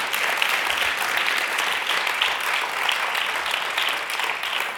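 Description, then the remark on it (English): A crowd applauds steadily, a dense, continuous wash of hand claps at a fairly loud, even level that holds throughout with no voices standing out. “We just wanted all the applause, yours and ours.”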